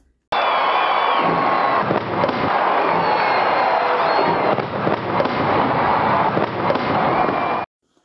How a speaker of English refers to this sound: So, ready for fireworks? Let's do it.